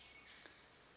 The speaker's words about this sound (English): A bird calls.